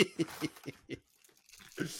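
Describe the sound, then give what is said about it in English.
Crinkling and tearing of mince pie packaging comes in a quick series of rustly bursts, a short pause, then one more crackly rip, fairly quiet overall. “You're kind of doing the same thing, but for a mince pie.”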